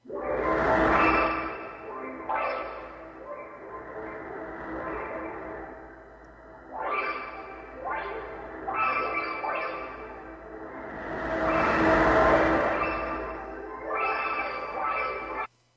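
An eerie space recording, the Sagittarius Cosmic Echo, linked to an enormous black hole in Sagittarius A, a couple of billion light years away: droning, layered tones with a series of rising, pulsing sweeps every couple of seconds and two big whooshing swells, loud and continuous, with no voices.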